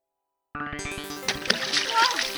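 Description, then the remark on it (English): After a moment of silence, a loud splash of water bursts out as an octopus's water tank in an office is knocked over by something huge being brought in. A buzzing tonal rumble runs underneath, and the splashing and sloshing continue steadily to the end. “Oh, my water tank.”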